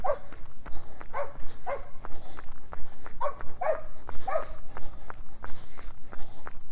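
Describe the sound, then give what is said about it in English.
A hunting dog playing fetch with an orange ball in a dog park gives short yips and whines over a steady patter of running paws or footsteps, moderately loud, with a faint low rumble of outdoor background. “Guy with his hunting dog in the dog park area. We're playing fetch with a orange ball.”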